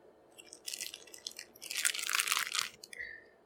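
Crunching of a Nutter Butter peanut butter sandwich cookie: two dense bursts of crisp, crackly chewing, the second longer and louder, with no talking.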